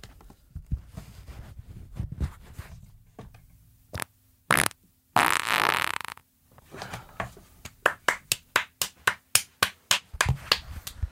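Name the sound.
fart into the microphone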